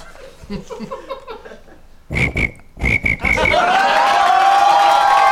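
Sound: voice imitating cricket chirping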